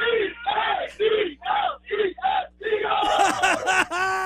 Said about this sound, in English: And actually, talk about a cheer. I think these guys want to give a little cheer here. What do we got, boys? What do we got?